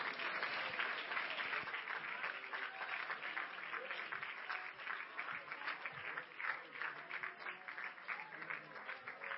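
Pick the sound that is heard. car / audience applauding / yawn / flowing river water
audience applauding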